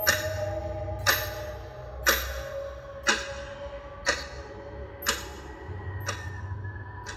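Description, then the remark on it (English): A large metallic clock, resting against beat-up filing cabinets in a tiny office, ticks steadily, about once per second, six sharp clicks standing out clearly over a low, constant background hum. “A large, ticking metallic clock rested against a series of beat-up filing cabinets.”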